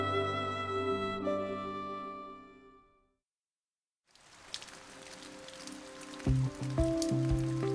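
Melting snow drips and patters against a window like steady raindrops, continuous, on a sunny Sunday morning after days of snowfall, following a fading musical tone and a brief silence, with soft sustained notes joining near the end.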